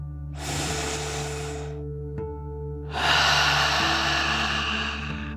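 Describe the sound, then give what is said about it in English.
A slow, deep breath drawn in through the nose, then a longer, louder whooshing exhale through the mouth, clear over a low, steady background hum. “You'll breathe in through your nose, filling up your lungs, and then out through your mouth, pretending you are breathing fire like a dragon.”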